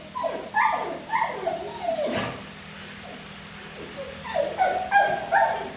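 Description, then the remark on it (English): Wilma the dog, a few metres away, lets out a rapid series of high yips and whimpering barks in two agitated bursts, with a brief pause between them and a low steady hum underneath, during a test in which her owner pats a pretend dog. “From a few metres away, Wilma reacts very strongly.”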